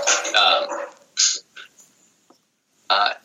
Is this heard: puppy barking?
yes